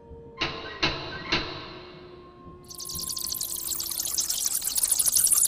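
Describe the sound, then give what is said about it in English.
Three sharp knocks on the door of an old house in an even rhythm, followed after a short pause by a loud, steady rushing hiss like pouring or spraying that keeps building to the end. “Here, I'll knock on the door.”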